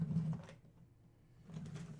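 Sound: drawer being opened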